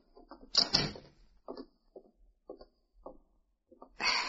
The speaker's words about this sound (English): May I speak to you in private? Just close the door and sit down. Thank you.